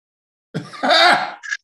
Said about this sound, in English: And I be having the hiccups.